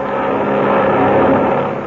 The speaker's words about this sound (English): Circling over the unequal sky battle is the bimotored silver-winged cabin plane with Ivan Shark at the controls.